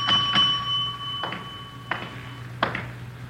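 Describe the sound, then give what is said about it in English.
A hotel desk bell, rung at the unattended front desk of the Sunflower Hotel, 433 Banyan Street, dings with a bright, lingering metallic ring, followed by several more sharp taps at uneven intervals over a low, steady background hum. No one speaks. “Nobody at the desk. I'll ring the bell.”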